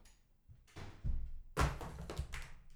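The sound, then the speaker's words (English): A chapstick tube is knocked over on a table, giving a few light knocks and a short clatter as it tips and rolls, with no voices. “You knocked over my chapstick, fucking you rudeness.”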